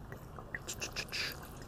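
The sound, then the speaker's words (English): Vodka poured over fruit until the fruit is submerged: a short run of soft splashes and trickles lasting under a second, quiet against a low background hum. “So I like to submerge all the fruit. I pour enough so they're all submerged.”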